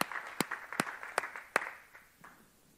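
A worshipping audience clapping their hands in a steady rhythm, with five sharp, loud claps about evenly spaced over a softer wash of scattered applause that fades toward the end.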